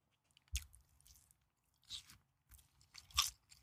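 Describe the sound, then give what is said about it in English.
Crunchy chewing of food by a man in an ASMR video, with several sharp bites and crunches spaced irregularly over wet mouth sounds, intimate, no talking. “Him chewing in my ear right now makes me want to run through that fucking wall.”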